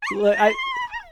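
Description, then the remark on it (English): A dog lets out a high, wavering whimper that rises into a short yelping bark, then trails off in softer whines over about a second. “Yeah, I mean, I do have this extra dog. Should we just sort of push him in there?”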